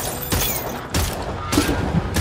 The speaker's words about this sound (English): You're shooting why? At the trains? What? But aren't people gonna call the police when they hear the gunshots?